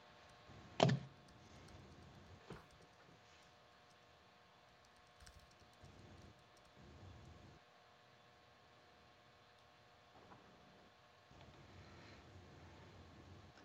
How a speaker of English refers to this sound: I was typing an email, doing customer service, doing it all here.